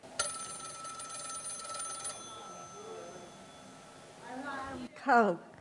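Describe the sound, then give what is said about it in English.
An alarm clock bell rings in a steady, rapid metallic trill for about two seconds, then cuts off, followed by people talking and a brief animated voice. “Alarm clock.”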